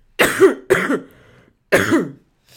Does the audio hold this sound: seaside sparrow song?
no